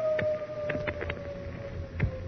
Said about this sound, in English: Beauvais said it was the howl of Wendiga, a werewolf, whose eerie call foretold the appearance of a headless Indian. And he who saw the headless Indian three times would surely die. As our last episode ended, the wolf had howled for the third time.